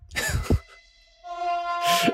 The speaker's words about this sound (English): Wow! I didn't realize you were that close to a train tracks. That was a loud one.